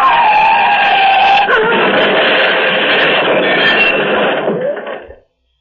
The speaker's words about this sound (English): The car is crushed against one of the cylindrical bridge supports, rammed against it head on.